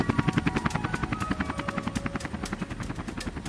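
Rapid, steady thudding of helicopter rotor blades, a loud rhythmic chop with a faint engine whine underneath, continuing evenly throughout with no voices.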